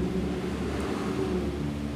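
A steady, unbroken whir of electric fans running because of very hot weather, mixed with a low droning engine rumble from passing cars, holding an even, moderate loudness throughout with no voices.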